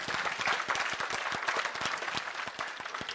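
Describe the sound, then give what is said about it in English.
An audience claps their hands during a sermon, answering the preacher's call, in a dense, steady burst of applause: many sharp overlapping claps at a moderate level with no voices standing out. “Well, somebody clap your hands like you know what I'm talking about.”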